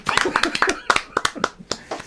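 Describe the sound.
Brisk, irregular clapping from a small group, sharp claps bunching together, with voices calling and laughing over it for the whole stretch.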